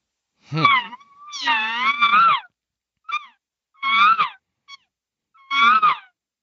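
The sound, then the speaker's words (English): An imitated cow elk estrus call aimed at a bull elk: a long, high, wavering nasal scream followed by several shorter squealing bursts with brief pauses, loud and alone with no talking. “I'm laying out that scream, his extra scream. I'm letting him know I'm ready to be bred.”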